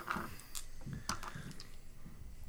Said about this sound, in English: Hold up. I'm going to get more dice out just so I can roll them all at once.